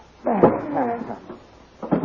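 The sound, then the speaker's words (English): A closet door, with a bound man just put inside, swings shut with a drawn-out hinge creak, followed after a brief pause by a shorter creak as it settles closed. “Now open that door, Dale.”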